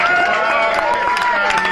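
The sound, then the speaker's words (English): An audience claps and cheers for the band's touring crew, a dense patter of many hands with voices rising through it, loud for a couple of seconds. “These guys never get enough applause, you know.”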